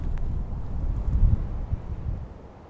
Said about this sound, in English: it's bright sunny day, but it's very cold and it's very windy.